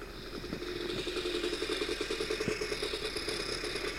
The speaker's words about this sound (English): Kim Jong-un at the Olympics, and I'm in the snowmobile race. Here I go. Oh, zoom it up. I got a rocket on the back.